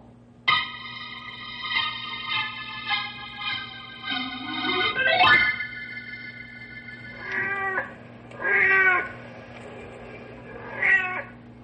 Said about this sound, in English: The big tomcat you're hearing on the prowl is called Blackie. He's the fond pet of Mrs. Beulah Lindstrom.